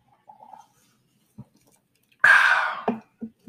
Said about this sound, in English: Well, let me take a sip here.